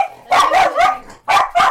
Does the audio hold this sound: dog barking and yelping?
yes